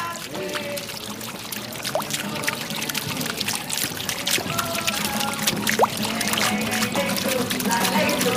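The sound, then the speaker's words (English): Water from a fountain in the orange gardens of the Alhambra in Granada, Spain, flows and trickles steadily, a continuous splashing rush with small bright drips scattered throughout and no pauses. “With street musicians singing in the shadow of the majestic fortress palace of the Alhambra, where fountains still flow through its perfumed orange gardens, from which the Moors were once exiled by Isabel and Ferdinand.”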